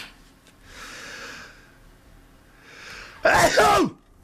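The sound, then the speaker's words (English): A person takes two rising, breathy inhales and then lets out one loud sneeze that bursts out abruptly and fades quickly. No talking. “I'm going to sneeze.”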